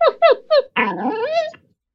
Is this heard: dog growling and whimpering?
yes